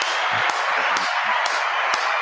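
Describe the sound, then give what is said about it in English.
Four sharp, evenly spaced claps, about two per second, cut through a steady wash of hissing noise. There is no talking. “Ah, fucking clap it up.”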